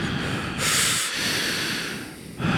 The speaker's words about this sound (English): I'm very aware that I can hear myself breathing.